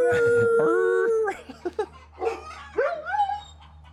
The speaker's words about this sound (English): Dude, freaking huskies are the best. They howl. We're gonna have to put the … comment on hold because this isn't gonna stop till it stops. You hear that? Yeah, it's wonderful.